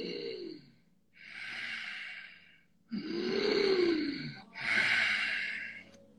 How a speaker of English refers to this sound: And there are different paces. I know on his app, you're going to get tired of hearing my voice. You can control the speed that you're breathing in and out. So you find a tempo that works for you.